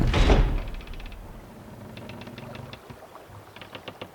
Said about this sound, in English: Cabin door slammed shut behind them.